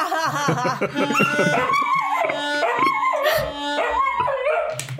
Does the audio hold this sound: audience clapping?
no